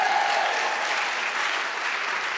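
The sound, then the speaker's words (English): A church crowd applauds steadily for the newly improved church toilet, a dense wash of many hands clapping at an even, moderate loudness throughout, with no voices standing out. “Yeah, round of applause for the toilet.”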